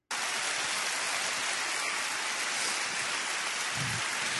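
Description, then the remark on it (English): A large audience at a prominent Christian megachurch claps steadily, a dense wash of applause that holds at an even, loud level throughout with no individual claps standing out and no voices. “Audience clapping at this prominent Christian megachurch.”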